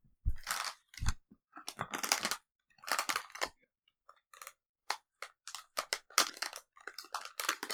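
A plastic snack bag being opened rustles and crackles in irregular bursts of sharp, bright crinkling, loud and uneven, with brief pauses between handfuls of noise and no voices.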